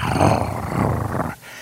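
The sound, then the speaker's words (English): A person imitates the engine of a brand new Corvette with a loud, rough, growling roar held for over a second, then cutting off abruptly. “brand new Corvette, the boom, oh, that thing growling like a bear.”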